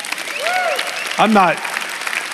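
A church audience at Fellowship Church claps in a steady, dense patter, with a couple of short rising vocal calls or whoops cutting through the applause.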